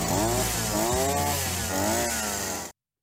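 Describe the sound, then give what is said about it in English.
A whipper snipper whines loudly and steadily, its tinny motor pitch rising and falling as the throttle revs, then it cuts off abruptly near the end. “There it is, the whippersnipper. It does sound a little bit like a tinny chainsaw.”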